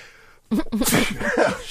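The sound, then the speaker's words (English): After a brief hush, a single loud sneeze bursts out, sharp and breathy, trailing into some voiced sounds. “I sneezed.”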